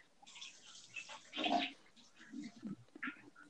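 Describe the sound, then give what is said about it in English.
A toilet flushes, a brief rushing surge of water that peaks quickly, then trails off into low gurgles and splashes as the bowl drains and refills. “I gotta flush the toilet.”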